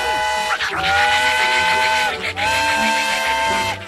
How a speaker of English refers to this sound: and you just freaking hear him quacking and hollering and blowing steam out of his ears, like with the train whistle like noise coming out of him, and he's like quacking all like crazy. It was really intense, but like it's also pretty silly.